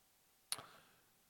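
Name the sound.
clock ticking countdown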